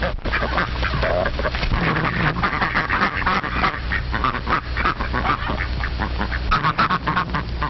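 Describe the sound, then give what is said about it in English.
A flock of ducks quacks loudly and continuously while their wings are being clipped, overlapping calls forming a dense, busy chorus with a low steady hum underneath. “Ducks need to have their wings clipped.”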